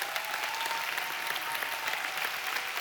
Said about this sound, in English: But can we just stand and clap and honor the fathers at Edmond, at OKC? Come on, give it up for the dads.